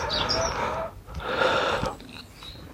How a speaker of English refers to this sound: Oh, there is a sparrow here now.